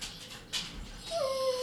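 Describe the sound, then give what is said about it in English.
A female dog whimpers to be let outside, letting out a thin, high-pitched whine that slides down and then holds steady for a moment, following a short burst of hiss. There are no voices. “She going to sit there and cry like shit.”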